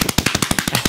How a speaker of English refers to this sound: But, oh my gosh, there's a huge helicopter flying overhead.